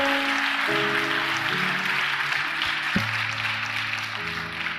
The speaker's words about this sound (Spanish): Podemos darle un aplauso a Dios por esto.